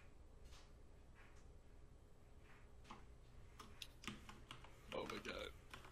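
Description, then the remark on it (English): Quiet, irregular clicks of fingers tapping a computer keyboard, scattered at first then bunching into a faster, louder flurry near the end, over a low steady background hum. “By the way, I'm typing, guys, so...”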